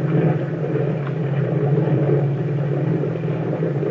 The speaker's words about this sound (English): Boy, that boat has power. Look at the way we're traveling.